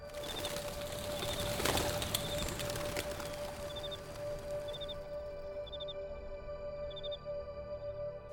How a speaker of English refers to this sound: A flock of blackbirds in the sky.